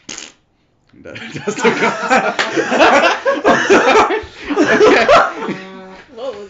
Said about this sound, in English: That's the gun sound. What was that? Why is it farting? Why is your gun make two different sounds?